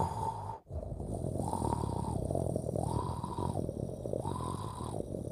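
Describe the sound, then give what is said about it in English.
A breathing-like sound from a shower drain in a bathroom, heard in the middle of the night: a low, raspy rumble that swells and fades in a steady rhythm about once a second, continuous and fairly quiet, with no talking. “Breathing from a drain.”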